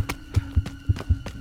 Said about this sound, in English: The pounding of his heart mixed with hoofbeats as he ran, desperately racing to escape his doom at the hands of the elf.